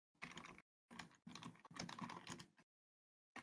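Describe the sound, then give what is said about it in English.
Fast, loud typing on a computer keyboard with fingers slamming the keys, a dense clatter of key strikes in several bursts separated by short pauses, with no talking. “You have a loud keyboard too. I slam my fingers on the keys, sorry.”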